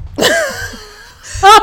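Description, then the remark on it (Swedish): A voice imitates an old woman's cough: a harsh, breathy burst followed by a drawn-out wheezing tone, then a second sharp raspy cough, fairly loud. “Och så dör man, och så precis när man har blivit skjuten, då hostar den där tanten så här.”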